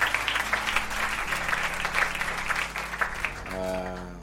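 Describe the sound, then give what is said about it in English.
An audience gives a round of applause for a church elder, dense clapping that continues throughout, with a low sustained musical tone underneath and a brighter organ-like chord entering near the end. “There's a round of applause for him.”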